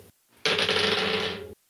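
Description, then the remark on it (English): Dice rolled for two jellyfish strikes in a role-playing game, one die a critical fail, rattle and clatter in a loud, steady burst lasting about a second, a dense run of small rapid clicks that stops abruptly, with no voices. “Well, that's a crit fail on one of the die.”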